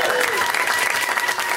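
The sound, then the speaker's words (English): Loud, steady applause from a comedy show audience at UCB, a dense wash of many hands clapping at once with a few cheers mixed in, sustained without pause throughout. “Sometimes audiences don't clap enough, and I'm like, get on the right side of history.”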